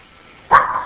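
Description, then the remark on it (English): A dog lets out one sharp bark that trails into a brief whining tone, breaking a short stretch of near silence, heard on a 911 emergency call. “Our assumption is the dogs were having a rough day, and it was the dogs.”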